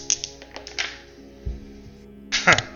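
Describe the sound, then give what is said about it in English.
Dice clatter across a tabletop in a few quick bursts of light taps and one dull thunk, ending in a louder rattling tumble near the end, moderately loud. “This dice right here needs to stop.”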